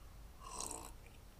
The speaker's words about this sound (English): Wow, nice. Just slurped in the middle of a sentence, eh?